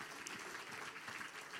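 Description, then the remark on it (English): A crowd claps hands to Jesus in a dense, steady burst of applause, many overlapping claps blending into a continuous crackling roar with no distinct individual beats. “Could you just say in Jesus' name, clap your hands to Jesus one more time.”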